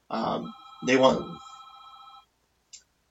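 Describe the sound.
A telephone rings with a steady electronic trill lasting about two seconds, with voices talking over its start, then it cuts off, followed by a brief faint click.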